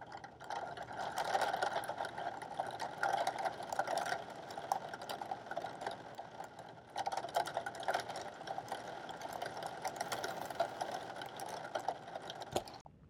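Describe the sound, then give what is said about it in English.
Steady rain falls in a dense, continuous hiss, thick with tiny pattering ticks and occasional sharper drips, holding an even loudness throughout with no voices. “Do you guys want some rain ASMR? Here you go.”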